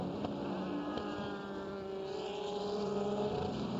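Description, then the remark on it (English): A sustained, buzzing drone of high-revving race car engines, pitch sliding slightly as a DPi and an LMP2 sports prototype pass at speed, briefly three across the track with a GT Le Mans BMW, with no voices. “And a couple of prototypes, DPI and an LMP2 car. And for a moment, there were three across the track.”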